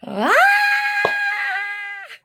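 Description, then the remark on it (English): A person lets out one long, loud scream, sweeping upward in pitch and then holding a shrill, steady note for about two seconds before cutting off. “I was just told I'm not allowed to scream on this episode, so I'm not joining you”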